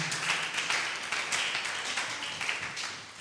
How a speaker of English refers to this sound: The way you are clapping in that, by now I can see that your emotions are changing.